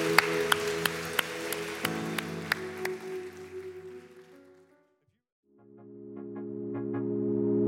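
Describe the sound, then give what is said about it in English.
An audience at a church service applauds seven people who raised their hands, with sharp, evenly spaced claps over sustained musical tones. The clapping fades to a brief silence, then the music returns alone. “Can we give these 7 individuals that raise their hand a huge round of applause?”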